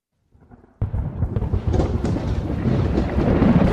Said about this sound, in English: got thunder as his beginning.